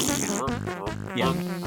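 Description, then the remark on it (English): A buzzy, sputtering fart noise stretches for over a second, its pitch wobbling up and down in a couple of rasping bursts, fairly loud with no talking. “He either makes a really loud fart or he blows a horn with his ass.”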